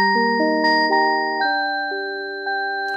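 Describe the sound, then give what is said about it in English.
A multi-note doorbell chime rings out clearly at a family home, several bright bell tones struck in sequence and left to ring and overlap, fading slowly with no voices present. “Just then, the doorbell rang.”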